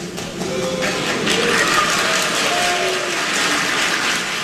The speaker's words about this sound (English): You can see a mix of boos and applause.